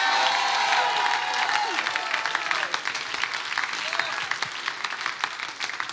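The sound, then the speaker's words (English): An audience at a sermon bursts into sustained, loud applause giving praise to God, mixed with cheers and excited shouts, the clapping dense and steady throughout, with raised voices calling out over it. “Come on, if you believe it tonight, give him some praise.”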